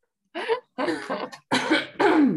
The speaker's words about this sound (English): I have a very big ball for a microphone, so I can't really cover it when I cough, but I'll try and... No, I'll just cover my nose.